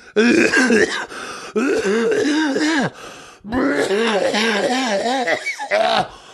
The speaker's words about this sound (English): Oh my god, I'm coughing so hard that the sound is vibrating. Man, I'm fucking so fucked up in my throat.